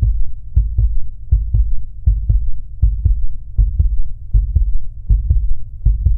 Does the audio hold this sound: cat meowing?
no